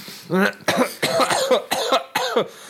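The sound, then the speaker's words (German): A man has a loud coughing fit: about five or six harsh, raspy coughs in quick succession, each a short burst with a strained, voiced edge, with barely a pause between them. “Jetzt hat er sich seine Überleitung gerade selbst zerstört. Mit seinem Hustenanfall.”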